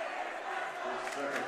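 A dense Lexington basketball crowd on the sideline rumbles with steady, restless murmuring and scattered shouts, growing more disgruntled at each referee call, a sustained wash of many voices holding at a fairly loud level with no single voice standing out.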